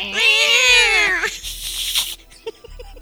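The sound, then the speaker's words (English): A kitten gives one long, high, drawn-out meow that rises and falls, loud, followed by a scatter of fainter, scratchy noises. “It fires kittens. Mew. Mew. Mew.”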